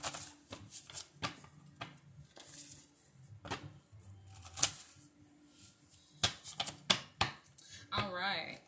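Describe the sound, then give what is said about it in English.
A deck of jar cards being shuffled, a run of sharp papery riffles and slaps in irregular bursts, with a bit of low murmuring voice underneath. “All right, let's jump right into the jar cards. Shuffle those up.”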